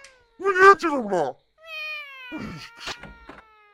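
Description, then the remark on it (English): Two cats trade loud, wavering meows and drawn-out yowls at each other, one rising cry sliding into a long sustained wail, followed by shorter sharp calls, clear. “Look at the cats, bro. Cats is going at it.”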